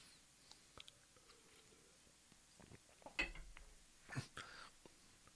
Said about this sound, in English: I'm going to have a little sip of water here.